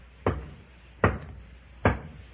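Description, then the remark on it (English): Three firm knocks on a refrigerator door, evenly spaced about a second apart, each a short dull thump that quickly fades, with no voices and only faint background hiss. “Okay, folks, line up in front of this refrigerator door.”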